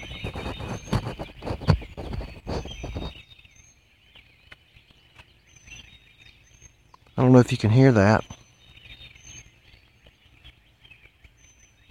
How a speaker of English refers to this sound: All kinds of birds, and they're singing every direction I can imagine.